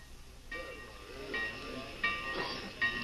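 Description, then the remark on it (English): A train standing at the railway station in Pineville, with a steady steam hiss, faint metallic ringing tones, and a couple of short louder bursts of escaping steam. “When I got off the train in Pineville last night, 2 men were waiting for me.”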